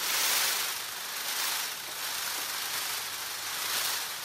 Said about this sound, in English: As this male Indian peafowl quivers his outstretched tail, it creates a rustling sound, almost like a drum roll.